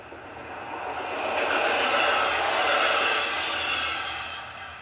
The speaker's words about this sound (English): Sounds like a train. That is a train.